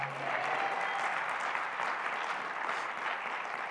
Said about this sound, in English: Give us a stronger amen and just clap your hands like you hear this morning.